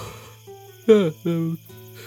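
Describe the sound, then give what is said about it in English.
A voice imitates a big yawn: a loud, drawn-out groan that slides downward in pitch, followed by a second, steadier voiced exhale, over a low constant hum. “She lets out like a big yawn.”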